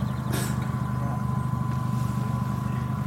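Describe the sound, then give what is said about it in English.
A modified car with a fat exhaust and drop down suspension gives off a deep, throaty engine rumble, loud, holding steady for the whole stretch, with a brief hiss of air near the start. “Yeah, this is the fat exhaust and drop down suspension.”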